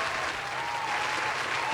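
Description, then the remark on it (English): A steady round of applause for Robert Smith's Morehouse tuition donations, with dense clapping from many hands holding at an even, fairly loud level for under two seconds and no voices standing out. “Can we get a round of applause for my man, please?”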